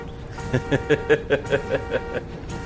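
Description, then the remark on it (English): A quick run of about eight short, evenly spaced car horn honks pulses between beats over a steady humming tone, moderately loud, with no one talking. “Well, that's a nice effect with the honking between each beat.”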